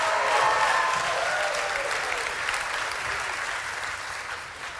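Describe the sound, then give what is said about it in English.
A crowd claps together unto the Lord in sustained, dense applause, steady and fairly loud throughout, fading slightly toward the end, with faint voices mixed into the noise. “If you receive that, go ahead and clap those hands one more time unto the Lord.”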